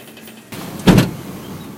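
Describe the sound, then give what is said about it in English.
A brief shuffle of someone settling into the officers' car, then a single solid car door thump, fairly loud, with a steady low cabin hum continuing afterward. “We finally get into the car.”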